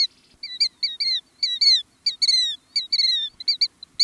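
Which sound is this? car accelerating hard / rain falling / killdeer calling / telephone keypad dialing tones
killdeer calling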